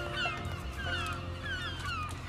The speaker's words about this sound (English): Anything else we want to say or the birds want to say?